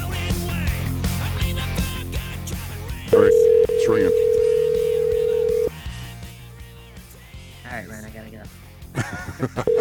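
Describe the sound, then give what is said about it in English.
A steady, loud telephone dial tone hums for a couple of seconds, then cuts off, followed by short beeps as a phone number is dialed to place a call, all over a busy background of music and muffled voices. “We're going to take a very, very short break as I call this number.”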